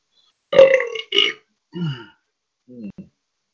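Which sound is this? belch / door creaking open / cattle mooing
belch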